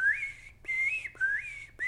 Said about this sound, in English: That's going to trigger the birds to begin their reveille call.